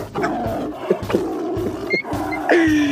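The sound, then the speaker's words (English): A person imitates a tiger's roar with a throaty, rumbling growl that swells and breaks into several rough bursts, fairly loud, ending on a strained, rising snarl. “But yeah, I am the motherfucking tiger.”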